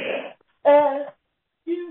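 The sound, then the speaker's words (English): A person yawns aloud: a breathy intake, then a drawn-out voiced groan that falls away, and a short, lower sigh after a pause. It is moderately loud, with no talking. “I apologize for yawning.”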